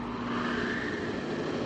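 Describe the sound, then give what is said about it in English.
A steady, unbroken turbine hum with a low droning tone beneath a higher whine, holding an even loudness for the whole short stretch, with no voices. “Progress is the sound of a motor, the hum of a turbine,”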